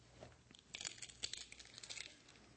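Faint, scattered metallic jingling and rattling of many keys being shaken at once by an audience during a Bible teaching, rising in irregular bursts for a couple of seconds with no talking.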